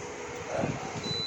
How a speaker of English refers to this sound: That's the air conditioner that you hear coming on. If you hear all that racket, all that noise.